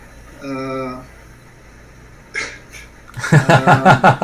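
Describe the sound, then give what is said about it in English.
A cat gives one short, clear meow, followed by a soft breathy rustle and then a burst of loud, rhythmic human voices. “Hey, Kitty.”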